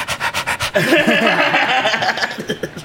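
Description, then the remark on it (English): A voice imitates an aggressive pit bull, starting with quick rhythmic panting breaths and breaking into a loud, rough growling snarl that carries on to the end. “I'm a fucking pit bull.”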